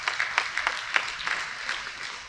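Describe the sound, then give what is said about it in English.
An audience at a church sermon claps for a couple of seconds, a dense patter of many hands with a few sharper peaks standing out, fairly steady and moderately loud, with no voices. “You can clap.”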